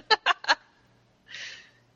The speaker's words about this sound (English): You walk away from the farmhouse. Suddenly, you hear a horrible screech behind you. You turn around and see a massive bird with an equally massive body.